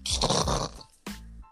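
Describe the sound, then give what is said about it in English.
A person imitates a snore with a loud, raspy inhale lasting about half a second, then a brief pause and a shorter, lower snort-like sound. “Yeah, I did the snore.”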